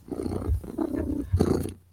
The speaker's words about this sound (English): I'm happy when I'm purring.